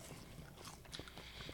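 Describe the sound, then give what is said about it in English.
Chewing on a sweet, fibrous plant stalk that peels like a firm banana, with soft, wet crunches and a few sharper bites repeating irregularly over a quiet background. “You literally like watch me. Like that. And you chew it.”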